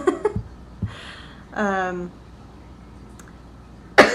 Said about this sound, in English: excuse me. Listen, if you could die quietly, that'd be great. Look, I told you, I'm like gagging right on my own cough right now.